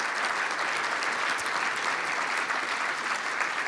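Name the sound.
audience applause and cheering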